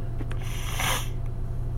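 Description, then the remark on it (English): A breathy nasal sniff swells into a loud, airy hiss and fades, with a couple of quick, fainter sniffs just before it, all over a steady low hum. “Again, pardon the sniffing.”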